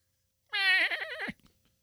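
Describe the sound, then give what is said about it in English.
A goat lets out one loud, human-like scream lasting under a second, its pitch wavering and quavering before cutting off abruptly, with nothing else around it. “From that screaming goat.”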